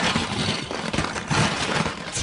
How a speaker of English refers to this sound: Wow, that's a loud junk drawer.